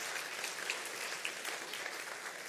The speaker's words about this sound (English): Can we give these guys a round of applause, just thanking them?